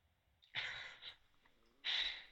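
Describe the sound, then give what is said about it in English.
Two short, rough throat-clearing bursts picked up by a sensitive microphone, the first slightly longer, separated by a brief quiet pause. No one speaks. “Could you guys hear me clear my throat there?”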